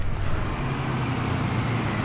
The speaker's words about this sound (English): There's my bus.